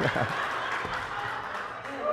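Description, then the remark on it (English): An audience at a worship service claps together, a dense, steady patter of many hands at moderate loudness, with faint voices mixed in underneath. “I wasn't trying to get you to clap.”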